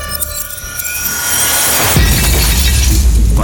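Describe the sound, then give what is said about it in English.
A glass on the edge of a table shatters in one loud, sudden crash partway through, breaking out of a steady humming background and trailing into a sustained, noisy clatter of fragments. No one speaks. “The glass will shatter.”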